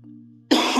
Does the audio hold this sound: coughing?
yes